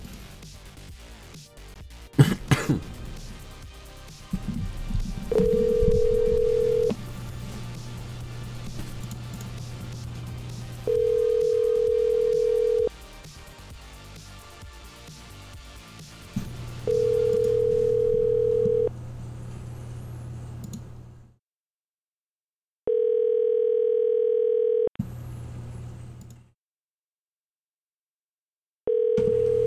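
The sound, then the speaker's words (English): A telephone call to Sullivan Petroleum sounds steady, repeating ringing tones, each lasting about two seconds with pauses between. They come through clearly over a low, noisy background, with a brief click near the start and no talking. “If this will dial, of course.”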